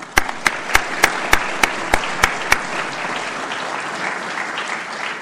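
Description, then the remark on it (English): An audience of prosecutors at a Thomas E. Dewey Medal award event applauds themselves, a steady wash of many hands with a run of sharp, evenly spaced claps standing out over the first couple of seconds before the clapping continues more evenly. “And for that, you should give yourselves a round of applause.”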